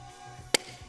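A single sharp crack of a wooden board snapping under a hammer fist strike, sudden and loud against a quiet background, with a faint low thump trailing after.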